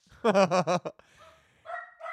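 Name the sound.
small dog barking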